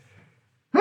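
After a near-silent pause, a single sneeze bursts out abruptly, loud and breathy with a voiced, rising edge, cut off at the end.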